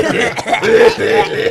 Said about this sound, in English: Okay. Oh, that was real. I'm old, and fake coughs turn into real coughs now.